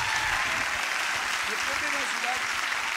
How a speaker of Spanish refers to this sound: Vamos a darle un aplauso del tamaño de tu expectativa por todo lo que el Señor va a hacer hoy.